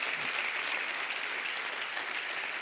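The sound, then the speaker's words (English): An audience claps their hands together in a dense, steady burst of applause, the many overlapping claps forming a continuous bright crackle with no voices standing out. “So clap your hands and say, I can make it in this life.”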